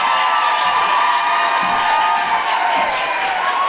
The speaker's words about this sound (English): People of America, please clap your hands with an Oprah Winfrey audience member level of intensity for Deborah Francis White!